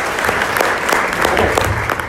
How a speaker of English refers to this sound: Round of applause